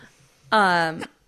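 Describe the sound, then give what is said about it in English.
A single loud sneeze, with a strongly voiced, drawn-out burst lasting about half a second and ending abruptly, followed by quiet. “Bless you.”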